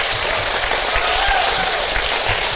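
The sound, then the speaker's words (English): An audience applauds the panelists of a show steadily, a dense wash of many hands clapping at an even, fairly loud level throughout, with a faint murmur of voices mixed in. “Round of applause for our panelists, everyone.”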